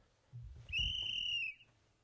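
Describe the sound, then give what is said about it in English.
A single referee's whistle blast marking the end of halftime and the start of the third quarter, shrill and steady, lasting under a second and loud, preceded by a brief low rumble of background noise. “That whistle means it's time for the third quarter,”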